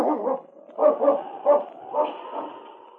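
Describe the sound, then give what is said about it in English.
A dog growls and lets out a series of short, gruff barks, about five or six bursts in quick succession, moderately loud, with no voices, as it trots off to investigate the cry of a lone timber wolf from the woods behind the shed. “And then, with another low growl, he trotted off to investigate.”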